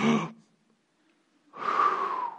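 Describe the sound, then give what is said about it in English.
A short, sharp intake of breath, a second of silence, then a longer, loud, airy breath with a faint whistle. No talking. “You haven't thought about breathing until right now, but you've been breathing all along freely, inhaling and exhaling.”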